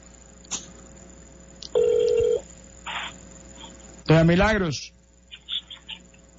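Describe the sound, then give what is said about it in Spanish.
Short electronic tones of a cell phone call being dialed sound over a faint line hiss, then a steady ringback tone, followed by a brief voice speaking on the line and a few more small beeps. “Déjeme ver si el celular la podemos conseguir.”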